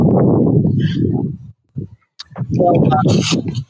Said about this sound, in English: Is it very windy over there or what's going on?